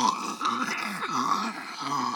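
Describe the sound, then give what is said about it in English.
A voice moans and groans continuously for a couple of seconds, low and wavering, its pitch sliding up and down in drawn-out swoops with no words. “Then he heard more moaning and groaning.”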